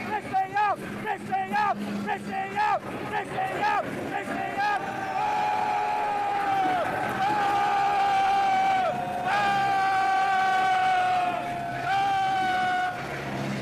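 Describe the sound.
A crowd jeers loudly and steadily as the new prime minister is driven to Downing Street, many voices booing together in long sustained tones, with scattered shouts and heckling cutting through the noise for the whole stretch.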